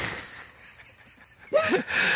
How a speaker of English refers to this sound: She's yawning.